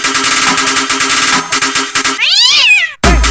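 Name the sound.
cat meowing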